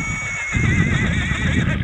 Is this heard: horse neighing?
yes